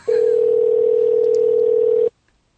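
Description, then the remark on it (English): A single steady telephone ringing tone plays loud and clear for about two seconds as an outgoing call is placed, then cuts off abruptly into near silence. No voices are present. “Okay, here we are calling. Let's see if it works.”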